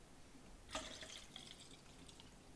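A third cup of drink is poured into a tall glass: a sudden splash, then about a second and a half of soft, bubbly gurgling that tapers off. The sound is quiet, with no talking.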